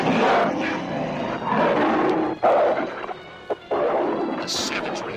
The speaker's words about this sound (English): The gray wolf attacks with the speed of thought, and soon the two half-human canines are locked in mortal combat.